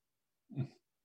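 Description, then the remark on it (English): A single short, muffled dog bark, fairly faint, rising and cutting off quickly amid otherwise quiet surroundings. “Okay, I get the award for something, right? For that, for the most dogs that bark during a show?”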